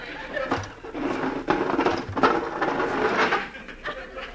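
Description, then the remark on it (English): A chair dragged across the floor, moved away from a barricaded door in a hideout: a steady, rough scraping that runs for several seconds, broken by a few louder knocks and bumps. “Now the chair.”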